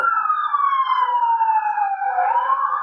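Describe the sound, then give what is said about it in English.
A police car siren wails steadily and loudly outside, its pitch sliding gradually lower as it passes by, with no one speaking. “But, you know, we look at all those cars. Cops.”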